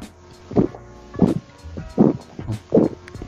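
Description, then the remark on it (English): Someone chugs from a lukewarm can of Rolling Rock beer, with four steady, rhythmic gulps about a second apart, each a low, thick swallowing surge over faint background hiss. “You really hear the chug there.”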